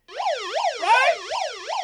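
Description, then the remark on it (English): A loud alarm wails on its own, its shrill pitch sweeping rapidly up and down about four or five times in under two seconds, with a rough, buzzy edge. “It's an alarm.”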